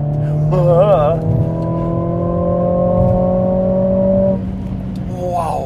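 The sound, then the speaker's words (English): A Mercedes 2-liter four-cylinder car engine revs hard, its pitch wavering briefly before holding a loud, steady, buzzing drone for several seconds, then dropping away near the end. “Oh, the 2-liter 4-cylinder is the world's most ubiquitous engine.”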